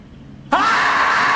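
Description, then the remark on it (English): After a brief quiet moment, a voice abruptly lets out a loud, strained, sustained scream, imitating the effortful yell of someone heaving a heavy weight. “I know how he sounds when he lifts.”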